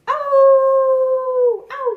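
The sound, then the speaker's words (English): A voice imitates a dog's howl: one long, steady, loud wail that drops slightly in pitch at the end, followed by the start of a second howl. “Nine dogs on a moonlit night.”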